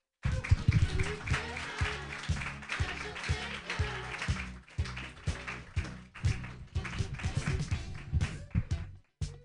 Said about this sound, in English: Clap more for Melina Best, everybody. You know the drill.